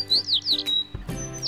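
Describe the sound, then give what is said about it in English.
Sparrows chirping in a quick run of bright, high descending tweets, about five short calls in a row, clear over a faint low background hum. “Say the sparrows.”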